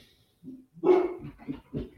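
A dog barks at someone walking past, repeatedly in short, sharp bursts, several barks in quick succession, fairly loud, with no talking during the barking.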